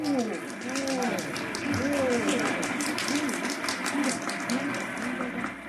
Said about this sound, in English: Yes, ladies and gentlemen, this is a happy, laughing crowd along Fifth Avenue today. A true reflection of the great sense of humor and good nature that makes America the place it is.